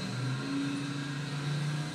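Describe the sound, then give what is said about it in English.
A car engine in a film scene runs steadily as the car moves on its own, a low droning hum with a faint rise in pitch partway through, holding at an even, moderate loudness for the whole stretch with no voices. “Oh, he doesn't realize the car is doing it on its own.”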